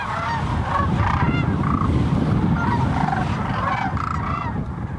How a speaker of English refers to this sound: Every spring, thousands of cranes converge on the Platte River to refuel on their way north. The birds feed in the fields during the day and rest in the river at night.